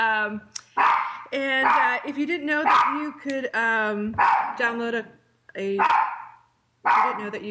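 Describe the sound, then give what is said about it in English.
A dog barks repeatedly in the background, a handful of sharp barks spaced about a second apart, while a person talks steadily over them in the foreground. “And there you go, you have my dog barking in the background.”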